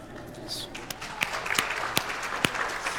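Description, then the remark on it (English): Scattered hand claps from an audience ring out as a handful of sharp, irregular smacks over a low, steady murmur of background noise, growing slightly livelier toward the end. “Everybody should jump on that clap.”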